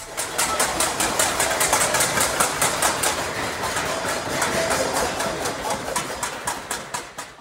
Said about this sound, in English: The clanging of pots and pans from doorways, balconies and windows across Yangon last night, a demonstration of discontent at Myanmar's military rulers who staged a coup on Monday by detaining Myanmar's civilian leaders